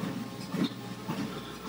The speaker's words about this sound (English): I can hear a motorbike, I think. Two-stroke motorbike or something like that.